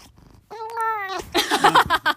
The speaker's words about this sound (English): Oh, the cat wants us to end the podcast.